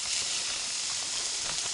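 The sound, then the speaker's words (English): Steady, loud sizzling of ground beef frying in a pan that is too hot as the meat is crumbled in, a dense bright hiss with faint crackles and pops scattered throughout, no voices. “I think I got the pan too hot because now it's going to cook this before I even get it all crumbled in.”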